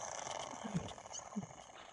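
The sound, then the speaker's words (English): Faint underwater contact calls of beluga whales, recorded in the Arctic with about 10 animals within 50 meters of the boat: a couple of short, low tonal squeaks and one brief high chirp over a steady hiss of background noise, with no talking. “whales aren't the only species to use contact calls”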